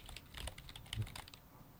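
Rapid, irregular clicking of keys on a computer keyboard, close by and fairly quiet, with a few heavier keystrokes standing out; no one speaks.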